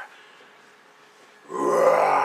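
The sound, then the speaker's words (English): A voice imitates a Bengal tiger's roar: a soft, breathy low rumble that swells suddenly into a loud, rough, sustained growl for the last second, with no words spoken. “Roar, said the Bengal tiger.”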